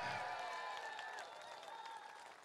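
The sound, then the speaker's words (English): Sustained audience applause for a team manager on stage at a presentation, a dense wash of many hands clapping at once, steady and fairly loud throughout and easing slightly toward the end, with some faint tonal sounds running underneath. “Come on, give him another big round of applause.”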